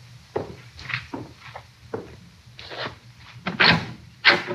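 A door is opened nearby, with a string of wooden clunks, latch clicks and scraping, then a couple of louder knocks as it swings. A low hum sits underneath, and nobody speaks.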